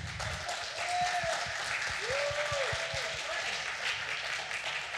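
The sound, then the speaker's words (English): An audience applauds the candidates in a contest steadily for several seconds, a dense wash of many hands clapping at an even level, with a few voices and whoops rising through it. “Make sure we clap for everybody, please.”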